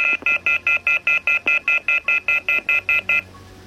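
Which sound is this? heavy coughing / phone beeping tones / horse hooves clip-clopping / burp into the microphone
phone beeping tones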